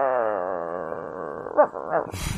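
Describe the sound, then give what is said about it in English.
A small female dog growls in a long, wavering rumble that rises and falls for over a second, then breaks into a few short, sharper bursts at the end. It's fairly loud. “She has the cutest little growl.”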